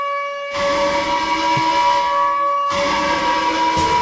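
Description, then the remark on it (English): A hockey arena's old goal horn from the late 1990s and early 2000s, a loud, sustained blast with a steady, multi-toned, alarm-clock-like pitch, sounds twice, briefly cutting out between blasts, over a roaring crowd-like wash. “Their horn used to be a lot different back in the late 90s and early 2000s. Here's what it sounded like.”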